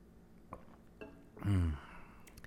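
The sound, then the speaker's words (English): Quiet: a couple of soft cup clinks, then a short, noticeable slurping sip of coffee with a low voiced exhale, followed by faint room tone. No talking. “That was a nice sip.”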